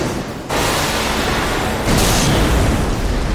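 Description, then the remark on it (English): A series of huge explosions, set off by a tripwire, roars loud: a sudden blast followed moments later by a heavier, deeper boom, with continuous rumbling debris noise between them and no voices. “A series of huge explosions go off in front of you.”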